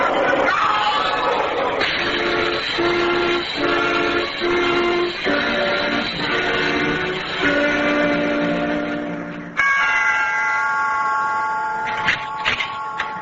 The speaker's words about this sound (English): Look out! There's a train coming! Look out!